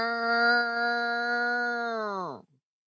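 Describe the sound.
A single voice imitates the Purge siren with a loud, steady, droning wail held for about two seconds, then sliding down in pitch and cutting off abruptly.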